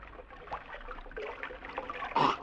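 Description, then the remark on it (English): Water in a stream trickles and burbles steadily, with a louder splash or slurp near the end as someone scoops a drink from the stream. No one speaks. “You better not drink out of that water.”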